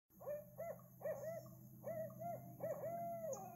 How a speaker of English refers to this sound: A low, soft hooting came from a dock shop with a sign saying, Eyelops Owl Emporium.